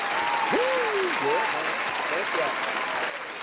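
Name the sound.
applause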